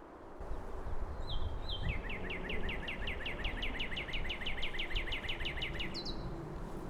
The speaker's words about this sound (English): almost as if on cue, there's a cardinal busy looking for mates.